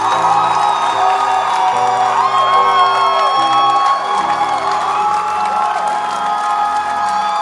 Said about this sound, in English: Is this how you clap for your pastor in this church?